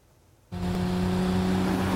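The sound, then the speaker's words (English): After a brief near-silence, a car engine roars to life and revs hard and loud in a Super Bowl TV commercial, with a steady growling hum that holds until the end. “Yeah, just your typical Super Bowl car ad.”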